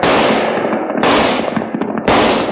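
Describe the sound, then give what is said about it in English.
Gunfire in a shootout, a gang shooting at the Charlton house: three loud, sharp shots spaced about a second apart, each crack trailing off in a long, rumbling echo. No one speaks. “There's a whole gang down there pumping lead into the Charlton house.”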